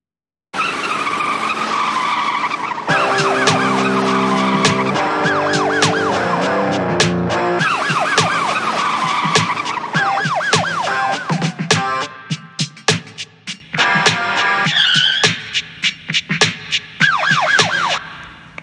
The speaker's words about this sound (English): You hear the sirens, man? Yeah, that's a sound that the Democrats are gonna hear a lot if Trump does not win the election.